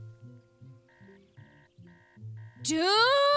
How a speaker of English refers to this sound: Stop setting your alarms early when you don't have a life! Setting your alarms early when you don't... Did you stop it? Yes. Because if I hear it again, I'm coming in there. Okay, now it's off.